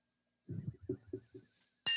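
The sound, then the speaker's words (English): A single bright clink of glasses touching in a toast rings out near the end, sharp, after a few soft, muffled low sounds. “So cheers, my friend. Cheers.”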